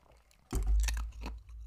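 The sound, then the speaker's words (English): A loud crunch of ice being bitten by a person's teeth, followed by a couple of quieter crackling chews over about a second, with no talking. “I have a bad habit of chewing ice.”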